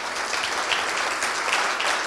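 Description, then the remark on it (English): Steady audience applause for three speakers at a conference session, a dense wash of many hands clapping at an even, sustained loudness for about two seconds, with no voices over it. “So I'd like to give a big round of applause to you, three of our modern Antigones today.”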